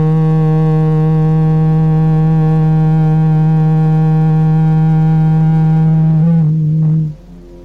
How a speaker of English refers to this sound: making that humming sound loud enough that you yourself can hear it. And if you're with a partner, that both of you can hear it. And you're having a bath in that sound resonance. And you can go on with that sound for about 5 minutes.